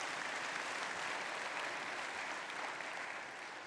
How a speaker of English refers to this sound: Come on, this is a good place to clap hands.